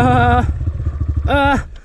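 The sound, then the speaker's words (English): A voice imitates a dirt bike engine: a buzzing rev, a sputtering low putter, a brief rising whine, then it cuts out to near silence as the engine stalls. “Engine stalled.”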